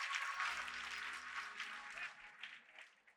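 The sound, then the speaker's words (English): An audience applauds, giving the Lord a hand clap of praise, in a dense, sustained wash of clapping that gradually thins and fades toward the end, with a faint low musical tone humming beneath. “Now put your hands together and give the Lord a hand clap of praise today.”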